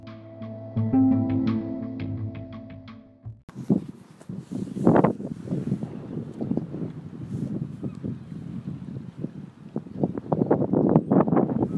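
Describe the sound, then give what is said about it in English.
Metallic clanking and ringing from boats in a boatyard, sharp repeated knocks with tonal rings at first, then irregular clinks over steady gusty wind and water noise. “Sure if you can hear the clanking of the boats in the boatyard.”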